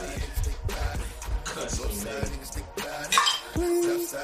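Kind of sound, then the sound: household object, cups clinking together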